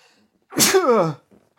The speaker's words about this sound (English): You know what's the worst is when you sneeze... And some of it you can feel kind of hits your nose. That's the worst. Like you're sneezing from your mouth right into your nose.